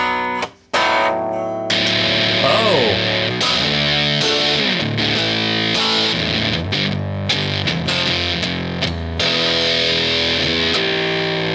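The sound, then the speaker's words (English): A heavily distorted Guild Starfire 4 hollow-body electric guitar plays loud, gritty chords and bending notes, with thick sustained tone and brief choppy gaps, no voices over it. “That sound you just made does not sound like it should come out of that guitar.”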